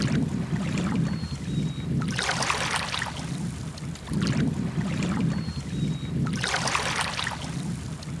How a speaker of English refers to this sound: So we have a little beach here, actually, don't we? Okay, now this is perfect. Just put the microphone down and listen to the water lapping.